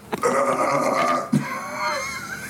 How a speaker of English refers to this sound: Like it replaces the burp? Yeah. I think of that like Ogre's belch in Revenge of the Nerds.